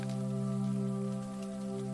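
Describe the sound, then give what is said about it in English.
Soft, steady raindrops patter continuously on the taut waterproof fabric of an umbrella held overhead by a person walking along a residential road, fairly quiet, with a low sustained hum running underneath the whole time. “She hears the twinkling raindrops patter softly on the waterproof fabric above.”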